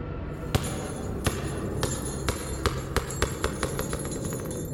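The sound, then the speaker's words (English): A small child's toy ball, coming from somewhere down the stairs, bounces with sharp, hard taps, the hits coming closer together and slightly fainter as it settles, over a steady low background rumble. No one speaks. “Little kid's toy ball. Landed right in front of me. Came from somewhere down the stairs.”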